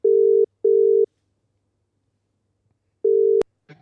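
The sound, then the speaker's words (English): An outgoing call's ringback tone: a steady, moderately loud double ring, a pause, then another ring cut short by a sharp click as the line connects, followed by faint rustling. “Oh, it's ringing.”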